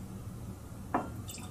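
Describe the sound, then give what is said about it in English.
A brief splash of scotch whisky poured into a glass, a four-finger pour: one quick drip-like plop followed by a faint, high glassy ring, fairly quiet against a low background hum. “Four-finger pour. Also known as the Sean pour in the Scotch for Dummies world”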